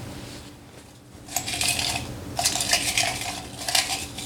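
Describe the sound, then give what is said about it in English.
Bright papery rustling in three bursts as a hand rummages through slips of paper bearing questions in a jar to pull one out, with short pauses between. No one speaks. “It's called the random questions jar, and you have to pull a question and answer it, and then you get to put a question back in when you go.”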